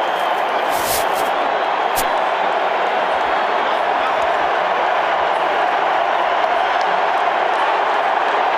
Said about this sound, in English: Trump was greeted by cheers and some boos. Can we listen to that raw footage of him on the field?